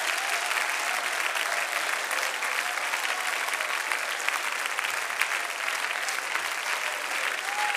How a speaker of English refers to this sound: If you concur with that, would you clap for a moment? Would you let your voice out to this Jesus?